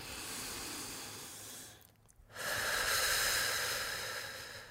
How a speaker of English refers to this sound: Let's do these deep breaths, and then we're going to take a break. Yeah. All right, so you want to lead us in these deep breaths? All right. So let's inhale and exhale all the shit that we just talked about. Okay, let's go.